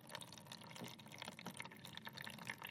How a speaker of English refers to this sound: So we're putting one blob of the plasticine into one of the tanks, and water is now trickling out into the bowl.